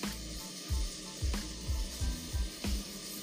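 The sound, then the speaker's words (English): Steady sizzling of food frying in a hot pan over medium heat, a dense crackling hiss with a few soft low thumps, likely from stirring or the pan shifting. No voices. “Still sizzling at a really great rate. And it hasn't become a dry sizzle.”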